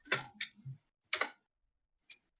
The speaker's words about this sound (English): So who is typing so furiously? Me, sorry.